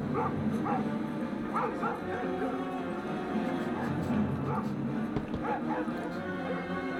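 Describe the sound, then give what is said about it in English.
Several German Shepherd search dogs bark in repeated bursts outdoors at night, clustered barks recurring every second or two, over a dense, rumbling background with indistinct voices. “We got search dogs. Everyone's geared up. A lot of German Shepherd search dogs.”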